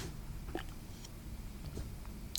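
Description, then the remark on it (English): A person swallows audibly, a soft wet gulp with a few faint mouth clicks scattered across a quiet, hissy background, with no talking. “I wondered how audible you were going to make your gulp.”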